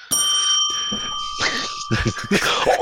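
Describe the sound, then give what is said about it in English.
A bell rings out with a bright, sustained metallic tone right at the start, its ring lingering as people begin talking over it. “You found a bell. I found the bell.”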